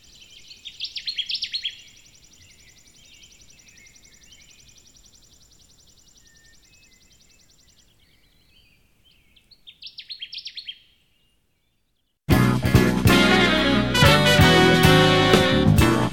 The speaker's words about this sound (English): The Connecticut Warbler song used in this story was recorded by Brian Collins, Connecticut Warbler Project Technician.